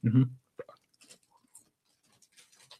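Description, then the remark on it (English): Quiet crunching as someone chews a mealworm coated in white chocolate, with irregular small crackling bites spread across a few seconds, after a brief low vocal murmur at the start. “That's the crunch.”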